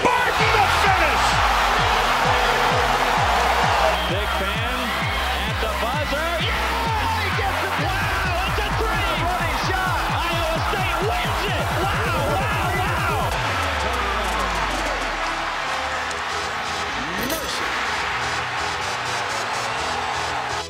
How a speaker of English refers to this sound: Tyrese Hunter on a run out. Stuffed it with the right hand. Listen to this crowd. Timeout, Iowa.